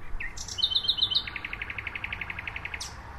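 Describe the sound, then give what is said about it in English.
A nightingale sings a rapid series of bright whistled notes, shifting into a long, even trill of repeated chirps, clear against a quiet outdoor hum, at night near oak trees in Berlin's Tiergarten, about 50 meters from the presidential palace. “This is one of the favorite places that nightingales stay for the 6 weeks or so that they're here.”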